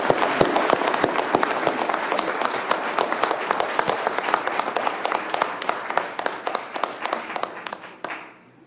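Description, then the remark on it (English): An audience at Calvary Bible Church breaks into steady applause to welcome two men and their wives joining the church's leadership in training, many hands clapping in a dense, even patter that holds for about eight seconds before fading out at the end. “Please, let's give them a round of applause as we welcome them to this community.”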